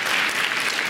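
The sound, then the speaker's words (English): A roomful of people clapping together for the VBS volunteers who set up the stage set, a dense, steady wash of applause that fills the whole short moment at strong, even volume. “Also, can we clap for all the VBS volunteers who set this all up behind me?”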